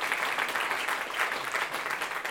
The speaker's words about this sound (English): I'm going to stop you guys right there. That's a very puny clap for 17 people coming to faith in Christ. I'm a little bit fired up today.